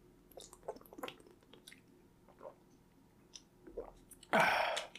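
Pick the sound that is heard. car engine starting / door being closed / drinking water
drinking water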